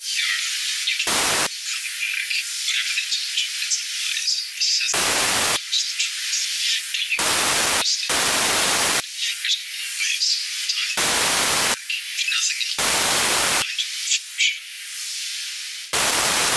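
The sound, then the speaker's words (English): A garbled, staticky hologram message transmission: a steady high hiss repeatedly cut by loud, harsh bursts of full-range static about seven times, with no clear voice getting through. “But it is very staticky, hissy, clipped and blocked in several places, although you can kind of hear his voice.”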